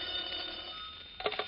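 An old-fashioned telephone bell rings in a steady, continuous trill for a call from an Equitable Life Assurance Society representative, with a brighter burst of ringing near the end, heard alone and no voices, on a thin, muffled recording.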